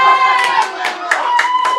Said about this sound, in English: And Siren has gone 3-1 up in unfortunate circumstances for Leah Whiffen. But the crowd here at the Corinium Stadium celebrate that one.